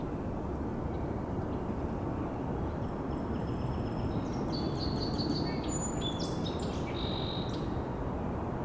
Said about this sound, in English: And I still hear another two, so I think this is... And I saw when they flew, it's actually five ducks. So this is seven wood ducks here.